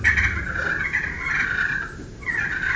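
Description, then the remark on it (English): Light, rolling turkey purrs made on a slate friction call, a steady fluttering trill at a mid-high pitch that runs unbroken for a few seconds, with one brief dip before resuming. “But I'll sit there a lot of times and do just light little purrs like that”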